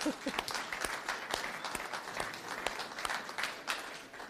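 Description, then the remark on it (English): An audience applauds the women on Mother's Day, many hands clapping in a dense, crackling patter that holds at moderate loudness throughout, with scattered sharper claps standing out. “So today, women, let's applaud you today.”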